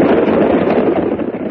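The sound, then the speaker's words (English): A cattle stampede sound effect from the radio program Challenge of the Yukon: a loud, continuous rumbling roar of many pounding hooves, dense and steady throughout with no voices. “Look out! It's a stampede!”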